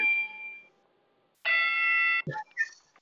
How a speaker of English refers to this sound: What the damn bell, Coach?